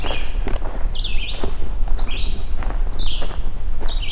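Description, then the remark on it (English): A red-eyed vireo sings short, clipped phrases about once a second, clear, from behind the person recording, while footsteps crunch and rustle steadily underneath as they walk. “Alright, I'm gonna walk past this red-eyed vireo and let's go listen to this magnolia warbler.”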